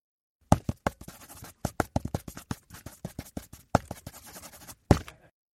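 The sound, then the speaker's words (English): Dry scratching of a pencil writing on a recipe card to alter the recipe: a quick irregular run of short strokes and taps for about five seconds, with no voices. “So please use this pencil to alter my recipe card.”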